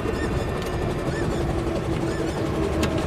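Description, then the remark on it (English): Birds in travel boxes give short, scattered calls under the steady, loud roar of a helicopter's engine and rotors as it lands at Tor's Ridge, just over the lake from Te Anau; the roar drones without a break. “As the chopper lands, we can hear the birds in their travel boxes calling.”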